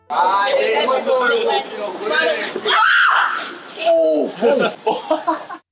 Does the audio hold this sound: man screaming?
yes